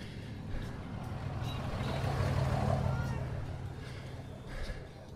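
A pickup truck rumbles past in the oncoming lane, heard from a bicycle on the road, its engine and tire noise swelling to a peak midway and fading away, over steady wind and road noise.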